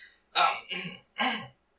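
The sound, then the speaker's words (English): Three short, muffled coughs in quick succession, moderately loud, with a slightly throaty, stifled quality of a man coughing into his hand. No speech accompanies them. “And the ambassador kind of coughs into his hand.”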